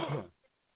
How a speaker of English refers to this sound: Cough it out. Deep breath, cough from your gut.